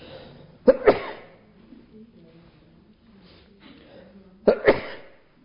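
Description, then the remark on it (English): Two sharp, explosive sneezes, each a quick double burst, about four seconds apart, with only a faint low murmur in between. “I'm going to sneeze, excuse me.”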